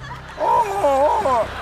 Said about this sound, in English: That's sounds of the whales in the oceans.